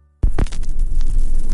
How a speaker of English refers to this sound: It all begins with a thrump as the needle nestles into a deep valley of vinyl. Sizzle and crackle turns into fizzle and scratch, and the mesmerizing rotations of pop and hiss. Ah, the crackle of a vinyl record.